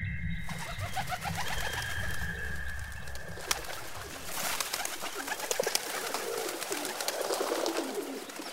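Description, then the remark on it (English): Pigeons coo softly in low, rounded pulses over a busy outdoor background with a steady hum and scattered higher chirps, with no one talking. “There may still be plenty of pigeons in the city streets”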